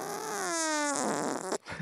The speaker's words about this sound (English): Dude, this is like a whoopee cushion sound. Yeah. This is great. Like the sound whoopee cushion.